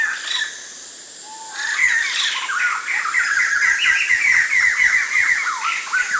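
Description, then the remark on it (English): A family of birds call and sing together at once in a dense, overlapping chorus of complicated squawks, whistles and chattering phrases, loud, with no pauses and no voices. “He was part of a whole family, and they were all singing together these kind of complicated things.”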